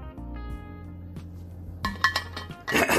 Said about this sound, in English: In fact, I'm a fan of this water I'm about to drink.